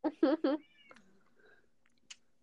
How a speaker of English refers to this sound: On a side note, is the meowing your fake cats in Minecraft or the real ones? The fake cats.